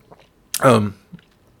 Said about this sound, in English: excuse me. Let me get a sip of coffee here.